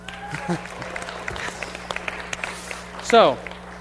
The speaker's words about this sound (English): Pretty cool book, don't you think? Round of applause for the Bible.